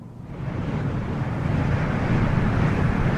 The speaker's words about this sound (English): It was a sound. They heard something. It was a sound as of a rushing mighty wind, something like this.